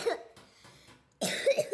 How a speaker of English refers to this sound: But the towering moose was interrupted by yet another witch having a loud coughing fit.